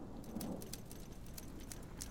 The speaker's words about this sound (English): Ooh, that's like a thunderstorm. Do you reckon that would work?